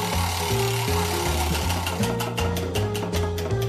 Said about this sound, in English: Right, let's give the wheel a spin and see what it lands on.